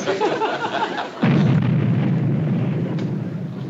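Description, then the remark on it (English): A construction blast on an underpass goes off with a sudden loud, deep boom, followed by a heavy low rumble that lingers for several seconds over faint background noise. No one speaks. “No, ma'am, that's just blasting on the underpass.”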